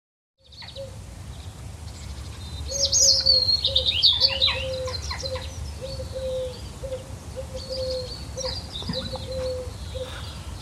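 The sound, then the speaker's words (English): Birds chirp and trill in bright, quick bursts on a sunny day in the countryside, over a steady outdoor hum, with a repeated low call pulsing in the background. The birdsong peaks early, then continues more sparsely. “Ah, it's a peaceful sunny day in the country. Can you hear the birds?”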